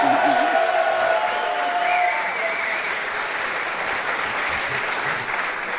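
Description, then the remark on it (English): A crowd applauds an 11-year-old girl who is playing fantasy football for the first time, a dense, even wash of clapping mixed with a few cheers and whoops early on, holding strong for several seconds before easing slightly. “so I was going to ask you for a big round of applause for Rebecca Shapiro, but you guys beat me to it.”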